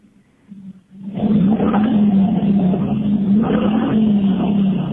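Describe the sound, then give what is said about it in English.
A Chevy 5.7 Vortec V8 pickup truck engine idles low, then roars into a loud, sustained rumble with a steady deep hum and slight surges in throttle, with no talking. “And that would be the sound of a Chevy 5.7 Vortec.”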